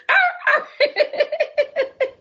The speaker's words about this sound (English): Well, that dog was mad, honey. He was going in.